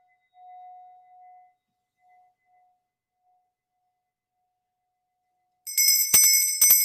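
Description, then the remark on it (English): A soft, steady tone swells and fades away, then after a pause a small handbell rings brightly and rapidly for about a second, fairly loud, with no voices, rung for a home blessing. “And of course, bells and rattles and drums and flutes and many musical instruments can be part of home blessing rituals, not only enhancing the connection with the here and now,”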